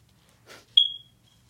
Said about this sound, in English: Ignore the fire alarm.